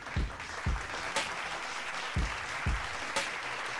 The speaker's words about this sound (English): it's only right that I bring in the person who's top of the league in the Fantasy Football League. So let's just give him a round of applause.